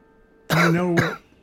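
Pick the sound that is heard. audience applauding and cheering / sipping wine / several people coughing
several people coughing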